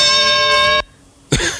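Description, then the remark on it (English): A loud, steady bell tone with bright ringing overtones, a wrestling 'versus' bell start sound effect, sounds for under a second and cuts off abruptly. A brief hush follows, then a harsh, noisy burst of compressed sound that rises at the end. “That's the versus bell start, and for some reason it has some type of weird compressor on it that's making it go up at the end.”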